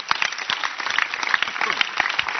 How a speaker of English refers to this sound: Can you clap your hands for this book?